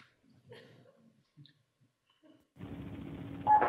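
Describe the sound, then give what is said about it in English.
A few faint taps give way to a steady hissing phone-line noise as a cell phone calls a bank's line at 10 p.m., then a single short, bright keypad tone for the digit 8, used to open a door, beeps near the end, fairly loud. “What I'm going to show you is that each one of you can open this door with your own cell phone by dialing the tone 8 from your machine.”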